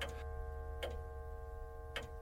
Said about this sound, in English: Oh, just the clock. Of course. I must be getting nervous. Jumpy!